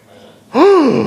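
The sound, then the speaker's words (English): A voice imitates a sharp, shocked gasp: after a brief quiet, a single loud, breathy intake rises and falls in pitch, sustained for about half a second. “And a gasp came over the crowd.”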